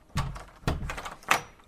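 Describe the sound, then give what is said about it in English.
A door to a bedroom in a house in Salisbury rattles in its frame late at night, with three loose clattering jolts spaced unevenly over a couple of seconds, moderately loud, with no voices. “At some point in the late night, his young daughter and a young woman who lived with him heard a door rattling to her brother Byron's room.”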